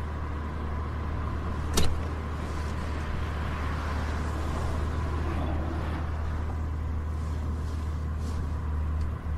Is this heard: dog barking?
no